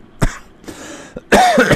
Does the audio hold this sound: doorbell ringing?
no